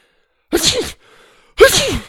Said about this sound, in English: sneezed even harder now.